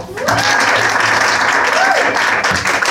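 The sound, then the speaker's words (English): Sustained applause from an audience welcoming the Bitter Bistro on stage, a dense wash of clapping at steady loudness for the full three seconds, with a few faint whoops and cheers rising through it. “Without further ado, please give it up for the Bitter Bistro.”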